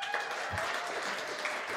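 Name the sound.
audience clapping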